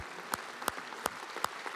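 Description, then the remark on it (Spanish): An audience applauds for the Lord Jesus: a steady wash of scattered clapping with four sharp, louder claps landing in an even rhythm about a third of a second apart. No one speaks. “Hey, fuerte el aplauso para el Señor Jesús.”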